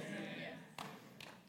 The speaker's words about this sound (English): Thank you for those two hand claps. Can I get a hand clap?